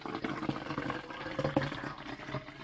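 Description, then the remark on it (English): Liquid pours steadily into a cup, a continuous splashing gurgle with a few brief bubbly bursts, moderately quiet, with no talking. “You gotta fill out to the line, please.”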